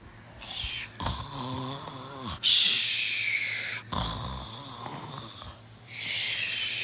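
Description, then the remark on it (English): Someone imitates a jailer snoring loudly outside a prison: two long, rumbling inhaled snores, each followed by a breathy, hissing exhale, repeated in a slow, exaggerated rhythm. “Outside a prison, the jailer is snoring. Can you snore for me?”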